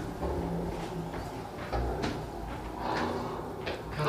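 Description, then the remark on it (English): A door being pushed and slammed shut, with a few short knocks and scrapes over a steady, noisy background. No one speaks. “All I got to do now is close a door.”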